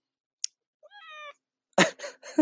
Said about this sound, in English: And my cat just jumped up on the porch, so you may hear her. You may hear her meow. Hi, Callie.